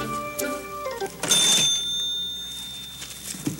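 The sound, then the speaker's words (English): A cash register, reached by a vine, rings out with a sharp, bright ding that lingers and slowly fades, preceded by a short run of tonal mechanical notes. No one speaks. “One of the vines is going to the cash register.”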